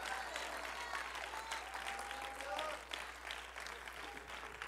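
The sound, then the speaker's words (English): An audience claps steadily in a dense wash of applause, with scattered shouts and raised voices rising over it throughout, clapping their hands to the Lord and shouting with a voice of triumph. “Clap your hands to the Lord and shout with a voice of triumph, and you may be seated in Jesus' name.”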